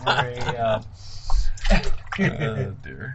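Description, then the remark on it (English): Water sloshes and splashes in a hot tub in a few short surges, partly buried under people talking throughout. “ASMR'd that into the hot tub.”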